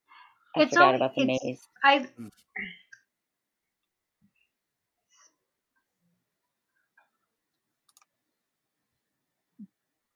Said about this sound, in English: is that your dog I hear?